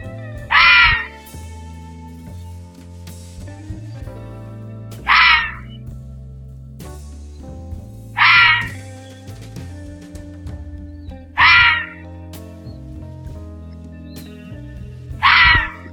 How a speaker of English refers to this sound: So, this is the one that sounds most like it, but mixed with a lower grumble, right? This is the scream of a red fox.